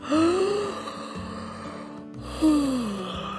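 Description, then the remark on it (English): Two loud, drawn-out black-tailed godwit calls, each a nasal, wavering cry that rises then slides down, spaced about two seconds apart over a low, steady background drone. “That's the melodious tune of the black-tailed godwit.”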